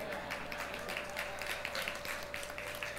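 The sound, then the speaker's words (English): Scattered applause from a small church audience, with irregular, uneven claps rather than a full ovation, over a steady faint hum and no talking. “I'm watching who's not clapping.”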